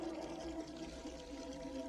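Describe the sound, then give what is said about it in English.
Water runs steadily into a bathtub being filled in a bathroom, a continuous, even rushing with a hollow resonant tone, moderately quiet and unbroken throughout, with no voices. “And he starts to fill the bathtub because of the itch is so bad.”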